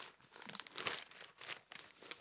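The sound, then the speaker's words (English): A hand slaps against paper several times in an irregular rhythm, imitating balls hitting paper, each hit giving a crisp, crinkly rustle; quiet, with no talking. “No, I did my hand, but I was trying to make a ball noise. What do balls sound like when they hit paper?”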